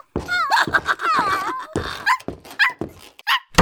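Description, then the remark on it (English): A dog, Toto, barks in short, sharp bursts mixed with high, wavering whimpers and whines, fairly loud, with no talking over it. “First it's the dog, then she'll have the cops here checking the immigrant status of your farmhands.”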